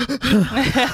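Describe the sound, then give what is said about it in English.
A voice imitates the racking, gasping sobs from a brutal TV scene: two quick catches of breath, then a run of wavering, hitching whimpers that rise and fall in pitch, fairly loud and alone. “Yes, racking sobs. Yeah, there was it was gasping. Was it this noise?”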